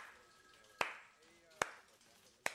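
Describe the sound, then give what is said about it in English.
Three sharp, solitary hand claps land at a slow, steady pace, each a crisp smack with a short decay, over a faint murmur of background sound. “I thought it was a good moment for a slow clap.”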